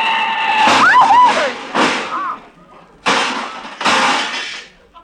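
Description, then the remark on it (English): Tires squeal briefly as a big black touring car skids, followed by a series of loud crashing impacts, four harsh bursts of metal and breaking glass spread over several seconds with short pauses between them. “Walter, look out! That car! What car? That big black touring car!”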